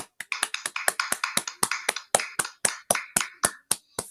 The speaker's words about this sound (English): So I say, Mick Foley, I think you'll get the very first ever Inside the Cage round of applause.